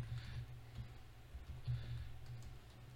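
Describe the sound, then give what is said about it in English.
Soft, rapid typing on a computer keyboard while entering a Google search, a quick run of light key clicks in irregular bursts over a steady low background hum, with no one talking. “I'm gonna Google Kompetu real quick.”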